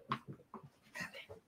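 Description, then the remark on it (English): A big Neapolitan Mastiff puppy named Emma whimpers in a quick series of short, high whines and soft yelps, fairly quiet, with brief pauses between the cries. “Oh, he's your puppy. Big Neapolitan Mastiff.”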